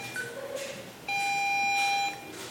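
A single sharp electronic beep from audio guide devices, a steady high tone that lasts about a second, loud against a faint background murmur.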